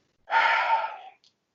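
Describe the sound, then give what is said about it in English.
One sneeze bursts out with no talk around it: a breathy, hissing blast that swells quickly, holds for just under a second with a faint voiced tone, then fades, followed by a tiny sniff. “Right, let's touch on it. Bless you.”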